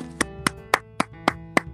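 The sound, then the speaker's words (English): Six sharp hand claps in a steady, evenly spaced rhythm, fairly crisp, over a faint sustained tonal hum in the background. “Get a round of applause.”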